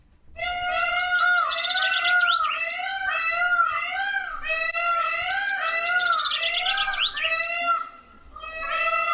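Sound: peacock call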